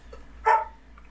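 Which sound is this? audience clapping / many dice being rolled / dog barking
dog barking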